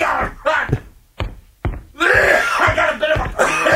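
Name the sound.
sneezing and coughing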